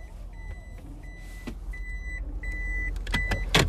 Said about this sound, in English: In the car right now. And I am leaving work.